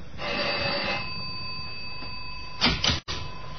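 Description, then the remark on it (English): The doorbell of apartment 6G on the 6th floor rings in two bursts, a rattling, metallic ring lasting about a second, then a shorter, louder burst near the end, with a steady high tone running underneath throughout. “Find 6G and ring the bell.”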